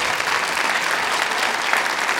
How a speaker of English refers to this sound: Somebody give the Lord a hand clap of praise.